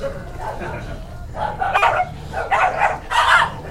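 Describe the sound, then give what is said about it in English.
Dogs bark in a few loud bursts spaced about half a second apart, preceded by a quieter stretch of low rumbling background noise. “Those are your dogs, Caden.”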